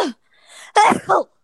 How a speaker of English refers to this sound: I have it. I just sneezed all over the phone.